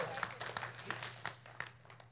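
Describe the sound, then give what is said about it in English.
An audience claps, but instead of one unified clap there is a loose, uneven run of sharp claps over about two seconds, fairly soft, with a low steady hum underneath and no talking. “One clap, let's all clap.”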